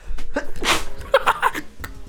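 A single sharp sneeze bursts out close to the microphone, a quick breathy intake followed by an explosive, noisy release, with some faint vocal sounds trailing after it.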